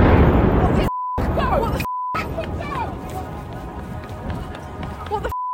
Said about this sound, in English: So that's Times Square. With everything peaceful yesterday until this sudden explosion that could be heard for blocks and blocks, sending hundreds of people running away in a total panic.